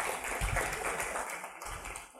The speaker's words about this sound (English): And if you want to give her a round of applause.